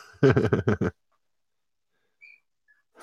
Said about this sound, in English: I can tell the difference in the barking. That's my wife. Oh boy. Yeah, because it's not barking, it's whining now. I don't know if you can hear that the difference.